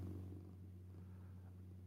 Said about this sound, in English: Listeners, I'm sorry. If you're hearing a rumbling, it's because my cat is now in my lap.